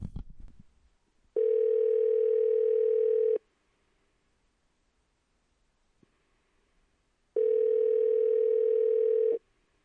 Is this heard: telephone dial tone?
yes